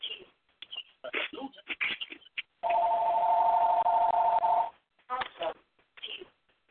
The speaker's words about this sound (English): Phone's ringing, it's not mine.